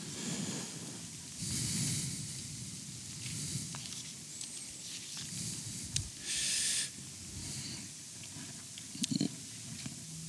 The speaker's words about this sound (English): Love hearing those pages turn.